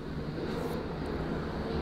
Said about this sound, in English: I think there's some kind of a aeroplane exercise going on. So much noise.